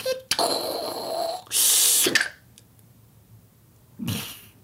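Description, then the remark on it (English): Foley of a vacuum-sealed capsule being dropped into the ground: a rough, rustling scrape, a bright burst of hiss, then a solid thud, a quiet pause, and one more short, muffled rustle. “That was dropping it into the ground, I think.”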